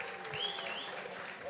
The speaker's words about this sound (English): Round of applause.